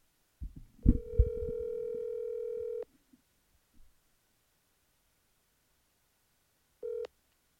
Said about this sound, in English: Hold on a second here. Got to make a phone call.